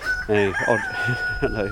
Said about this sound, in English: And a lovely group of, I don't know what type of chickens those are, black with gold streaks and cockerel, is standing on top of some railings, giving it his all to his three hens. One is smaller, so probably a bantam.